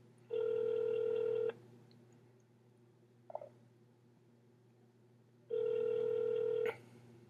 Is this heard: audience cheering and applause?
no